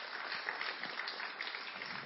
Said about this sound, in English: Okay, just give her a round of applause as she goes back to her seat.